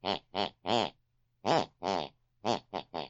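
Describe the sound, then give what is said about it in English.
A mother's snoring, listened to through a bedroom wall, that follows a tune: eight raspy, buzzing bursts in a bouncy rhythm, each with a shifting pitch, forming a short melody with no talking. “Whatever my mother's listening to before she goes to bed, picks and pulls on her unconscious mind, and that's the very tune she snores.”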